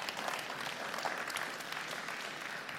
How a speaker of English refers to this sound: Hey, y'all can clap for that.